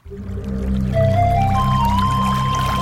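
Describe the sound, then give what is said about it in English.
Water pours steadily into a container, clear, its pitch rising as the vessel fills over a few seconds. No voices, just the continuous splashing gurgle of the stream. “Water.”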